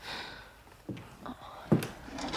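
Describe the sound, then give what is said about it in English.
The top drawer of a dresser in a bedroom is pulled open, with a couple of soft wooden bumps and a louder knock as it slides out. “I open up the top drawer of my dresser and feel around for the lube and anal vibrator you gave me a few weeks ago.”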